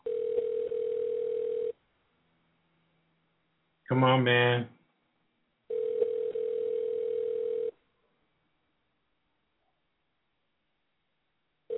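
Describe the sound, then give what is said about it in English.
An outgoing phone call's ringback tone, calling a DJ who does not answer, purrs twice in steady two-second bursts with long pauses between, and a man mutters briefly in the gap, with a third ring just starting at the end. “See if he answers his phone.”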